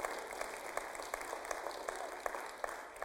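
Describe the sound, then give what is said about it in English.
An audience in church claps together, a dense wash of many hands with a few sharper, louder claps standing out at an irregular rhythm, steady throughout with no voices. “Are we going to be a clap in church and an amen in church or what?”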